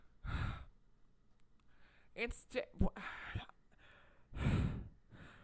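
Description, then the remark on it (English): A person makes exaggerated, heavy panting breaths: two loud breathy exhales with strained, voiced gasps and grunts between them, performed as a vocal imitation. “It's just me, like, panting until I pass out.”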